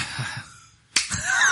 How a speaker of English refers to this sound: He just clapped